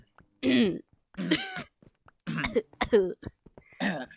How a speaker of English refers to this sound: No, we're just going to let it sink in for a few seconds and just like awkwardly just clear your throat.